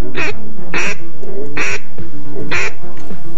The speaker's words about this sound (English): I listened and started naming each in my head. Mallard. Wood duck. Gadwall. American black ducks.